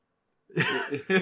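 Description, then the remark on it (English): After a moment of silence, a man imitates a dog, letting out two harsh, throaty barks, the first longer and the second short and sharp. “He starts barking.”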